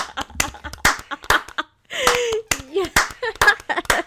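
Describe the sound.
Sharp hand claps repeat at an uneven, unhurried pace throughout, fairly loud, briefly interrupted midway by voices exclaiming and laughing before the clapping resumes.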